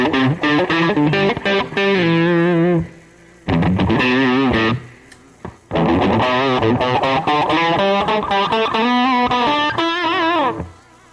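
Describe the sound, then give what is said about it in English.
An electric guitar with stereo delay and reverb plays bending, singing lead phrases in three loud bursts separated by brief pauses, the notes trailing off into echoes and wash. No one speaks. “I mean, obviously, you hear the stereo delay on this side with this. And the reverb.”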